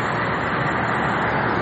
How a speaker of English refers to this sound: We're crossing traffic, so we're walking to the store. I figure we'd spend this time doing some improvised stuff, so if you hear a lot of traffic, it's because we're having to walk to the store about 3 miles.